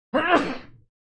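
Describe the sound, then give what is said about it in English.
A single sneeze, fairly loud, with a short voiced burst that quickly fades and is followed by silence. “Bless you.”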